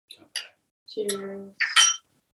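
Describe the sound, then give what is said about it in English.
Bright glass clinks ring out as glasses are clinked in a toast, a couple of quick taps early on and a louder, ringing clink at the end, with a brief voice sounding in between. “And just let's give him a kanpai. Cheers.”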